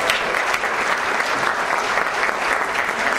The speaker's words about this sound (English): A round of applause for the students for putting this together.